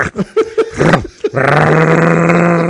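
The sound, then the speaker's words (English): A voice imitates a chainsaw: a few short sputtering grunts like a pull-start, then a loud, steady, buzzing drone that holds its pitch for over a second. “You turn around, a guy's running a chainsaw.”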